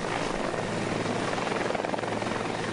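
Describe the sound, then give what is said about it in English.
A helicopter roars, its rotor chopping in a steady, rapid pulse over a dense engine whine. The sound is loud and continuous, with no voices. “time I really started to worry was when they were getting ready to put me on the helicopter.”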